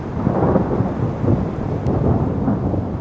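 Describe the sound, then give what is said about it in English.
A long, deep rumble of thunder from a storm rolling in during a prescribed burn near Sisters rolls continuously, heavy low-end energy sustained throughout, with a faint hiss of rain or wind on top. No voices. “About 4 hours into the prescribed burn near Sisters, a storm rolls in.”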